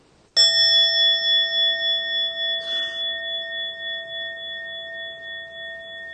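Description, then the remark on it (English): A mindfulness bell is struck once, sounding for the second time, ringing out with a clear, pure tone and several steady overtones that sustain and slowly fade over several seconds, heard alone without any talking. “And then you invite the bell to sound for the second time.”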